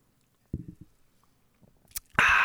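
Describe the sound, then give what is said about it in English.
A few soft thumps and a sharp click of handling, then a loud slurping sip of juice that starts abruptly near the end and continues to the cutoff. Nobody speaks. “I'm going to take a big old sip of my juice right now just to get this, whatever this is that we're doing, out of my fucking mind.”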